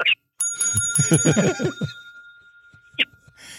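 A bright bicycle-style bell rings once, its clear metallic tone lingering for over a second while a person talks over it, followed by a couple of short clicks.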